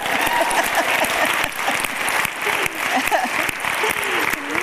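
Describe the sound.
Sustained audience applause for an audience member who had spoken, a dense patter of many hands clapping at steady loudness for several seconds, with a faint murmur of voices mixed into the crowd noise.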